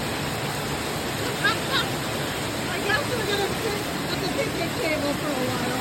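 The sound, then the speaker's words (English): Heavy rain pours down in Oregon in a steady, dense hiss that never lets up, drumming on a gazebo roof where people walking their dogs took shelter, with a few faint murmurs of a voice buried beneath the downpour. “It hasn't rained this hard, and I don't know how long.”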